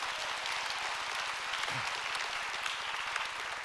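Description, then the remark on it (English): An audience claps in a steady, dense burst of applause that holds at an even level throughout, bright and crackling, with no voices standing out. “Now you can clap right now.”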